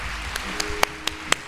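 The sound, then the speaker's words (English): Hands at a church gathering clap in a steady, even rhythm to receive the word: five crisp, sharp claps about a quarter second apart, the third and fifth loudest, over a low background hum with no voices. “Put your hands together real big and receive the word today.”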